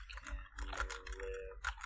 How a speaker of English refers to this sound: Everyone can hear me typing.